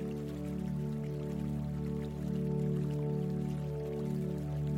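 A small water fountain trickles and splashes steadily, an unbroken gentle wash of falling water, with a low sustained tonal hum beneath it and no voices.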